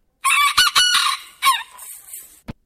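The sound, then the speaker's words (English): A bantam rooster gives one shrill, high-pitched crow, broken into a few quick bursts, loud, followed by a brief faint rustle. “Well, I, of course, pulled a sample off of YouTube to let everyone know, if you haven't heard a Banty rooster before, this is what it sounds like.”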